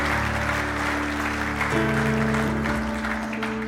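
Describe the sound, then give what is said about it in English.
An audience applauds at the end of a morning church sermon in a steady, dense wash of clapping that lasts throughout, with sustained organ-like chords holding underneath and shifting pitch partway through. “If you're glad it's finished, let me hear your hands this morning.”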